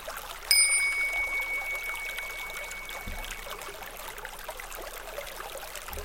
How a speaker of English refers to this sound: We'll begin and finish with the sound of a bell.